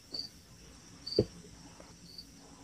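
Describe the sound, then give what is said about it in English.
Crickets chirp outdoors in short, high-pitched bursts repeating about once a second, fairly faint against a low background hum, with a soft thump partway through. “Yeah, I hear some crickets.”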